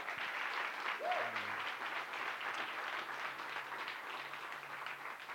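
A sustained round of applause from an audience, dense and steady clapping at even loudness throughout, with a faint voice briefly audible underneath near the start.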